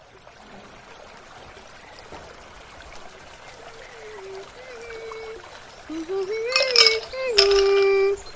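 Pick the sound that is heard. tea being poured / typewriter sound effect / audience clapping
tea being poured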